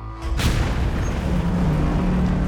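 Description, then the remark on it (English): The steel hull of the ship Exxon Valdez slams onto Bly Reef at 4 minutes past midnight on March 24th with a sudden heavy boom, then a loud, continuous low rumble and grinding scrape of steel against the rocky seabed as a deep droning tone rises underneath. “The sound was deafening as steel scraped against the rocky seabed.”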